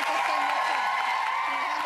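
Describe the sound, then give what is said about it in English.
A studio audience claps and cheers in a steady, dense wash of applause with crowd noise mixed in, holding at an even level for about two seconds, as a comedian gets everyone to clap. “See, they have the comedian, like, getting everyone to clap and have fun.”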